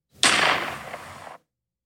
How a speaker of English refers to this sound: Was that a gunshot? Was that a, hold on. Was that a gunshot?